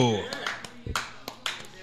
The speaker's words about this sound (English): What thunderous applause. Yes, it was quite thunderous.